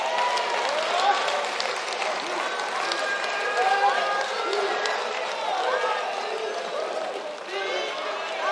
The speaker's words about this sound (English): Oh, they sang this morning. Give them a hand clap.